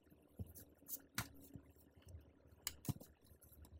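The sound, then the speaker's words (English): Fairly quiet papery rustling and a handful of sharp flicking snaps as a deck of tarot cards is shuffled and a tarot card is drawn, with no one speaking. “I figure I start off this episode drawing a tarot card that I just shuffled.”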